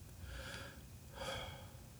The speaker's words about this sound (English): Breathe. Breathing has two components, in and out.